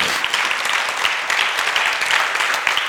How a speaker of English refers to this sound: And as they came through, yeah, you can clap. That's cool. I mean, that's fun.